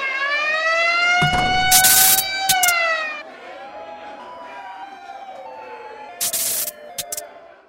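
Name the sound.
alarm siren wailing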